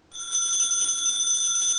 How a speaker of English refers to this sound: Telephone's ringing!